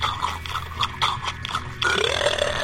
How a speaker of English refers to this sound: Oh, is that burp? What was it? It was at 10:27. One of our guys shows, he burps during the show and he times it.